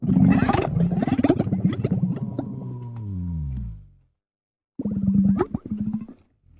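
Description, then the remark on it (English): A loud, deep rumbling, gurgling dola call, made by pushing air through a big, wet, pink balloon at the side of the mouth, bubbles for about four seconds and sinks lower in pitch, then, after a brief silence, a shorter burst of the same throaty gurgle follows. “like this big, wet, pink balloon, and then sort of pushing air through it such that it makes this like rumbling, gurgling, bubbling sound. And hot. Yeah, it's very hot. It is called the dola, and this is what it sounds like.”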